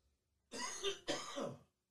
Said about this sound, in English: Need a cough button.